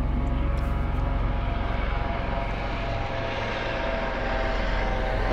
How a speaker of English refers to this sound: I'm sorry about that. There's a plane going overhead, but again, I apologize, my audience, for those who are listening.